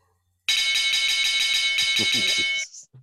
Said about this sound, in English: Wait, it was supposed to be the fight bell. It was supposed to be this one.